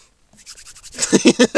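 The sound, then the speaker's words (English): Soft scratchy pen strokes on paper start quietly, then build into louder, rapid rhythmic scribbling bursts with a slightly squeaky, pitched edge. “That's me writing down on a piece of paper.”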